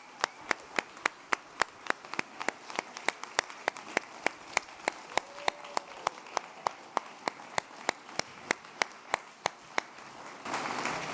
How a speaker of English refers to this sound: Let's stand on up and give God a rousing round of applause.